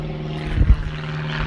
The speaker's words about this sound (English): Fucking bird. You know it's a plane, but still.